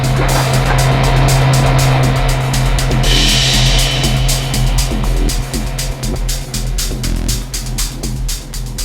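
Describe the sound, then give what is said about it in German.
A loud, steady engine roar with a low throbbing drone, like a speedboat racing across water, with rhythmic slapping bursts and a whooshing rise in the middle. No voices. “Während Karl und Tim über das Wasser jagten,”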